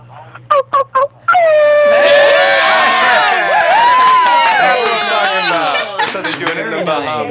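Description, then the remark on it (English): Three short clipped sounds, then voices imitate a wolf howl during an AfterBuzz TV Teen Wolf panel call-in show: a long, loud, wavering cry that glides up and down in pitch for several seconds, with other voices seemingly joining in. “Can we get a howl from you?”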